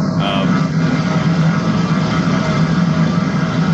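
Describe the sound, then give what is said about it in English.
Trogdor the Burninator, the dragon from Homestar Runner, breathing fire: a loud, continuous roaring rush with a deep droning rumble underneath, holding steady throughout without pauses or voices. “There's a dragon that just came into the podcast, just breathing fire.”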